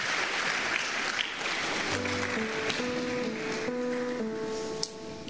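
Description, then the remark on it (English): An audience claps for the Lord, steadily, in a dense, continuous wash of applause, and about two seconds in, sustained keyboard chords join beneath the clapping. “Clap for the Lord and stand your feet.”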